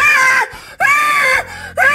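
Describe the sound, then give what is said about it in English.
A person screeches in loud, high-pitched wailing bursts, three rising-and-falling cries separated by brief pauses, mimicking an eerie banshee shriek. “I turn on all the lights and start screeching like a banshee.”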